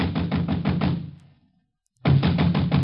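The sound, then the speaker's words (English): Loud, rapid banging on a door in the village, a fast drum-like volley of knocks that stops for about a second of silence, then starts up again just as hard. “I was soon banging on a door there like a drummer playing ….”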